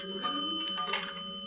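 Payphone coin bells ring out as small change is put in for a call placed through the operator, a sustained, bright chime lasting about a second and a half, several high metallic tones overlapping at a steady moderate level with no one talking.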